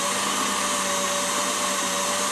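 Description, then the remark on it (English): A steady, loud electric mixer whipping batter to thick ribbons whirs continuously, a dense buzzing hum with a faint high-pitched whine running through it, no voices over it. “Want to get those ribbons slightly thicker, but I don't want to over whip.”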